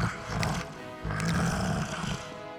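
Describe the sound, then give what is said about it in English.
A deep, throaty roar from a Minotaur, a monster with great horns and a big brass nose ring, in two long snarling bursts, gravelly and rumbling with a raspy growl layered through it, loud and with no talking. “The monster snarled, displaying his great horns and big brass nose ring.”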